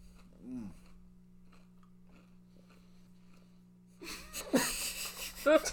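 Crunching on a granola bar: after a stretch of quiet low hum, loud, crisp crackling bites burst in over the last couple of seconds, mixed with brief vocal sounds.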